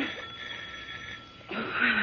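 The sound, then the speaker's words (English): A steady hiss of water running into a bathtub fills the first part, then a doorbell starts ringing, a bright, buzzing tone that stays loud to the end. “You can't answer the doorbell, can you,”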